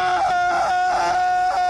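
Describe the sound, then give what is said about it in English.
A movie scene of Killian Murphy in a dream, screaming inside his suit, muffled: one loud, sustained, strained cry that wavers in pulses for a couple of seconds, with no talking. “I love when he would be in his suit and screaming, and then they would flip to the outside of the suit.”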